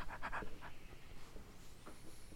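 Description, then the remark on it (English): A male dog pants heavily right into the microphone, quick breathy huffs coming in uneven bursts, loud and close, with no one speaking. “He'll breathe right into the mic the whole time.”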